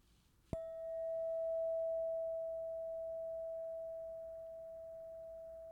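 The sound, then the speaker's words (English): A single meditation bell is struck once and then rings on, a steady mid-pitched tone with faint higher overtones that slowly fades over several seconds with no talking. “So just now, I invite you to close your eyes and just listen to the bell.”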